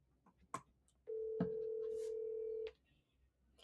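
A phone call ringing out: one steady, mid-pitched ringback tone lasting about a second and a half, preceded by a few soft clicks and followed by quiet.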